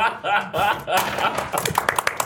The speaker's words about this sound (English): Round of applause for that wonderful performance. Golf claps.